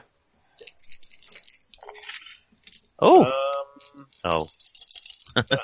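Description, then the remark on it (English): Green dice clatter and rattle for a couple of seconds, a light, scattered tumbling, rolled for a vigilance check in a game, followed by a short exclamation and some talking. “I've got no skill, I just roll to the green dice.”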